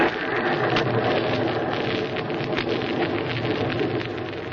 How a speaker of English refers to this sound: Listen to that rain on the roof.